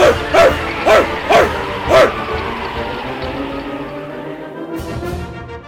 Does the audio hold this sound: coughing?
no